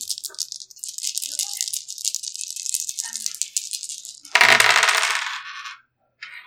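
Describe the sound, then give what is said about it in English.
Dice rattle steadily in a cup or hand for about four seconds, then tumble out in one loud, bright clatter that fades, followed by a brief pause and a final faint click. “So let's see what we're going to be rolling.”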